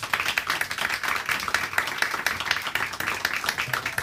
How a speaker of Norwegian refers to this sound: Jeg skal gi dem en skikkelig applaus. Dette var flott, folkens.